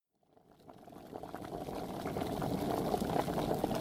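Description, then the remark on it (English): Water boiling in a pot in a kitchen while apple cider is being made, a dense, steady bubbling that swells from quiet to a full rolling boil within a few seconds, with no voices. “holding a cup of prunes over boiling water.”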